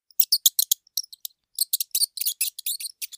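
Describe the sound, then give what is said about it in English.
A mouse squeaks in quick, high-pitched chirps: a flurry of short squeaks, a brief pause, then a denser burst. No one speaks. “It was the mouse.”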